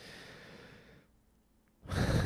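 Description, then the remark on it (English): A voice imitates a man in a group breathing too loudly through his nose: a long noisy exhale, a brief pause, then a sharper, louder inhale-like burst, alone with no speech. “I was in a group this morning, and the guy next to me was breathing too loud.”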